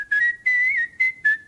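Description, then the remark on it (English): A professional whistler, a world champion, whistles clearly, four breathy, sustained notes of a tune with a slight pitch bend in the middle, each separated by brief pauses, with no talking. “pretty good pro whistling right there.”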